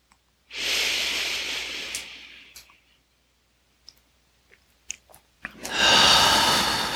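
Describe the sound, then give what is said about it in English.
A long, forceful exhale during a breathing exercise hisses out for about two seconds, followed by a few soft clicks and quiet mouth sounds, then another strong rushing breath. Fairly loud, with no talking. “Last one, squeezing it out down into the earth.”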